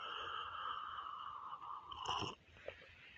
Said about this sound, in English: Let me take a sip of this coffee to see how good it is.